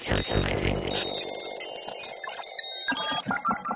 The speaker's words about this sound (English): Because if we run that handy dandy inflation calculator one more time, beep, beep, boop.